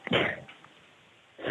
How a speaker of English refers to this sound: Bless you. Are you sneezing